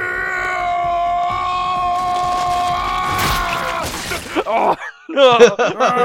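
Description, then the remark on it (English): A man's voice, imitating the JoJo character Joseph yelling on an escalator, lets out a long, sustained yell with strong harmonics, rising in intensity before breaking off, followed by a few shorter, strained cries. “Okay, so there's no, it's gonna all Joseph yelling right now on an escalator.”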